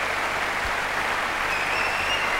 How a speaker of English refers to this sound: That's a crowd. That's an audience right there. That is in Munich, München, West Germany, 1993.